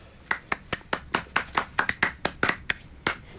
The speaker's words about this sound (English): Bravo. Allow me to give you a round of applause.